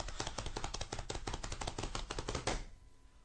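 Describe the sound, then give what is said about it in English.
A rapid, steady drum roll tapped by hand on a tabletop, a dense run of sharp knocks lasting about two and a half seconds before cutting off into quiet. “I'm going to give a drum roll.”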